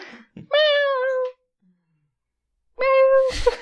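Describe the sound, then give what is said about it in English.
A person imitates a cat meowing, giving two drawn-out, nasal meows separated by a short pause, the second ending in a breathy burst. Fairly loud, with no other sounds. “I have a kitten flashback. Meow.”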